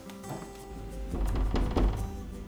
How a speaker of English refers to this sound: Getting out of my studio, there is the bathroom. Let's knock to see whether anyone is there.